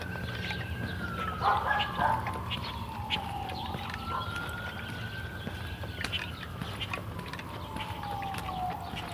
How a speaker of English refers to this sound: Okay, multiple sirens. That's a fire. That's a dog singing along with the sirens.